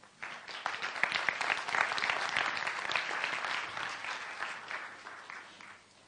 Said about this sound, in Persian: واقعا این تجربیات لایق اینه که همه دوستامون رو یه بار دیگه تشویق کنیم.